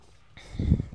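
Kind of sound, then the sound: food or drink, sipping a cola drink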